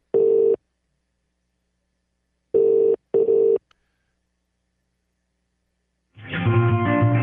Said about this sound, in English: One ringy-dingy. Oh, now we're going to England. That's the English dial tone. That's English ring.